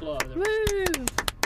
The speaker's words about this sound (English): Round of applause.